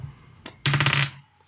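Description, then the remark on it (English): A die rolled for a perception check in a tabletop role-playing game clicks once, then rattles and tumbles across a hard surface in a quick half-second burst of clattering taps before coming to rest. No voices. “Roll.”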